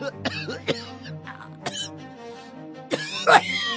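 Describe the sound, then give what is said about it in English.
A man has a fit of coughing: several harsh, raspy coughs come in uneven bursts, ending in a louder, strained cough with a wheezy, squeaky edge. Fairly loud, with no talking. “He has a fit of coughing and just hearing it like almost hurts.”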